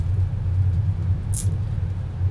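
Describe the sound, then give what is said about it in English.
Steady low rumble of a moving train bound for Germany, heard from onboard, a constant droning hum with a brief high hiss or squeal near the middle; no voices. “So, I'm on the fucking train.”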